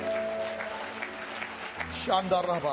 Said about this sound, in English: Clap your hands and thank God for Him.